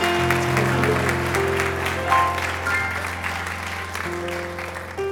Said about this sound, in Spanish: Si usted ha recibido la enseñanza, dale un aplauso al Señor en este día.